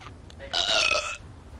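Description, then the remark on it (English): A single loud, drawn-out burp from an animated cartoon scene featuring Bart and Marge, with a raspy, tonal rumble lasting about half a second, with no talking around it. “I'm still the burp champion of the world.”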